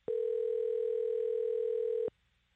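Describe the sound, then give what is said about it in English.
A single steady phone ringback tone sounds for about two seconds, a loud, even electronic hum that starts and stops abruptly, then falls silent as the line waits to be answered. “Pick up. What if we were in an emergency?”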